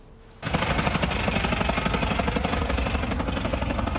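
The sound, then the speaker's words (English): A small plane engine runs loud and rough in the plane's final moments before a crash, its noise breaking into rapid, uneven stuttering pulses that kick in abruptly after a brief quiet moment and continue steadily. “An eyewitness video we obtained shows the plane's final moments, and it's clear from the sound of the engine that something wasn't right.”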